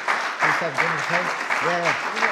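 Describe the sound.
A crowd applauds steadily in a dense, continuous patter of clapping, with voices talking or calling out over the top throughout.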